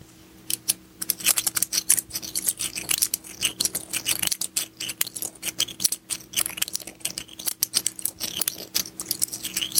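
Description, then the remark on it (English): Quarter coins rubbed and scraped together, producing a continuous stream of rapid, bright clinking and grinding with no voices present. “is going to be playing with quarters and rubbing them against each other.”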